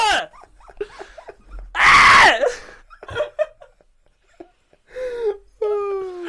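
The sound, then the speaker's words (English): A person lets out a loud, harsh yell in one sustained burst, surrounded by shorter excited vocal sounds and bits of high-pitched voice before and after. “I can't even bleep me yelling because I have to...”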